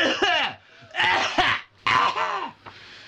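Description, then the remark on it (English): A person imitates loud, harsh coughing, three forceful bursts about half a second apart, with brief pauses between them. “I prefer them just having that conversation in front of him, and he just keeps coughing really loud. Like that.”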